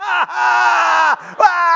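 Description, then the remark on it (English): A person vocally imitates the loud, sustained wailing scream of a professional mourner, a long drawn-out cry broken by a brief dip and gasp, then rising again, strained. “And they would scream.”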